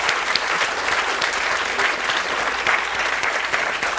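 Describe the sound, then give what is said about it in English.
Sustained applause from a sizable audience welcoming a speaker being introduced at a talk session, a dense steady patter of many hands clapping at full volume throughout, with no speech over it. “ladies and gentlemen, a round of applause, please, for the wonderful Miranda Kaufmann”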